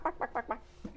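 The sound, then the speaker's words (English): A person imitates a chicken, clucking four quick, evenly spaced bawks, then one lower, softer cluck to finish. “People would be like, what? Are you a chicken?”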